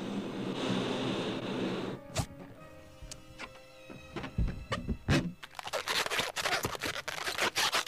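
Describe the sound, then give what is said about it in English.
Rubbery squeaks and sharp little snaps as a balloon animal is twisted, followed by a stretch of steady squeaking and rubbing against the latex. No one speaks. “You want another balloon animal? Sure, that'd be great. Before I go? All right. Here's one more.”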